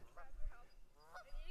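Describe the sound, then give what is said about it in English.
Geese honk three or four times in short, nasal bursts, spaced irregularly, over a low outdoor rumble. “The geese are cheering. The geese are squawking.”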